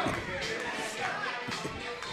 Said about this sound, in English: And now the crowd is chanting. They're chanting for Jim Stone.